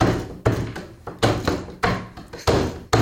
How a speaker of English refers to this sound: But can we gotta like bang the table and like rap to it if we're gonna do it.